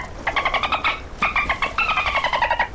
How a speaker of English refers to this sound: And they're jumping out of the water, playing in the waves. What do I spy? Dolphins!